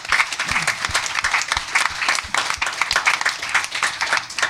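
An audience applauds a presenting team after their company presentation at a startup event, many hands clapping in a dense, continuous patter that holds at a fairly even loudness for several seconds.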